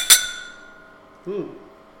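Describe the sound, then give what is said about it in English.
A single bright clink of whisky glasses in a toast, over Glenrothes 12-year-old single cask whisky, rings out and fades with a shimmering tail, followed by a brief murmured voice. “and also we are drinking Glenrothes 12-year-old from Lockvine. Yeah, a nice wee single cask. Cheers, boys. Yeah, cheers,”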